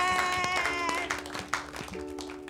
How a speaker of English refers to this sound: Clap for the Lord yeah.